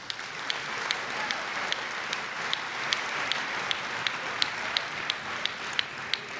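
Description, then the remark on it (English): An audience at a school concert applauds steadily for several seconds, a dense wash of clapping with a few sharper individual claps standing out at a regular beat, moderately loud and without any voices. “So once again, huge round of applause for all of our faculty.”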